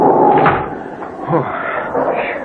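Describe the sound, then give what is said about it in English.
A heavy door slams shut with a dull, solid thud, set against a loud, steady rush of wind that fills the whole moment. “I'll bolt this door so the wind won't rip it open.”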